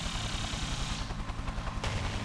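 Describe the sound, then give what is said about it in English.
A sniper in a helicopter fires a dart; the gunshot cracks out over the steady, thudding drone of the helicopter's rotor, the loud mechanical rumble continuing throughout with no voices. “A sniper from the other helicopter is aiming at our non-copyright infringing spider person. He fires.”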